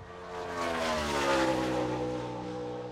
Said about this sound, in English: I don't know if you could hear that, but the car just went by. I heard it go by.